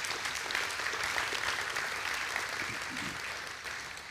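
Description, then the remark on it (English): An audience claps together as an applause for the Lord, in a steady, dense wash of applause that holds at an even level for several seconds before easing off slightly toward the end. “you want to give the Lord an applause?”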